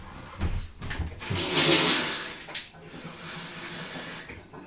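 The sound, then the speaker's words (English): Water runs from a sink tap into a container, adding a little water to a warm malty mixture, in a loud hissing gush lasting a second or two, then settles into a softer, steady flow until the end. No one speaks. “Now the one thing that was missing, you see, was a nice bit of water, so I'm going to go over to my sink. I'll put a bit of water in here.”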